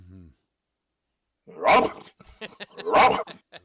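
A dog barks twice, two loud barks about a second apart, with softer short yips or grunts between them after a brief low vocal sound and a pause.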